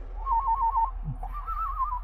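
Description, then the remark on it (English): A person whistles an imitation of a warbler's song: a run of quick, wavering mid-pitched notes, a brief pause, then a longer rippling trill, over a low steady hum. “Well, here's your standard warbler.”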